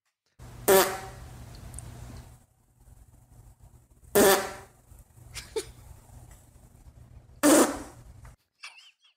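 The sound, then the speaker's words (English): A dog's farts: three loud, raspy blasts a few seconds apart, each with a buzzing, horn-like tone, over a low steady hum and no talking. “I'm gonna say that is not a human fart. That is correct.”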